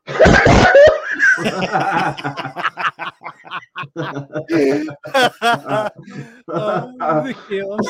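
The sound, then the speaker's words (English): A voice imitates a man pretending to cough to hide his laughter: a few loud, forced coughs that quickly give way to a long run of rhythmic, stifled giggling and snickering, as if laughter is being badly disguised. “tried to pretend he's coughing, and he goes like this.”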